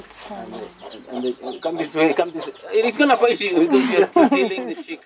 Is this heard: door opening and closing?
no